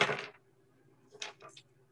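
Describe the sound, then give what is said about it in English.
Metal Heartbeat Pride dice clatter across a table: a sharp burst of rattling, a short pause, then a few quicker bright clicks as they settle, over a faint steady hum. “I need a dice tray on this.”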